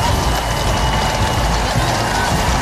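A large crowd reacts to the Duke and Duchess of Edinburgh and their children with a steady, continuous roar of cheering and mingled voices, loud and unbroken for the whole moment, with no single voice standing out. The route is lined by uniformed civil organisations, including the St John Ambulance.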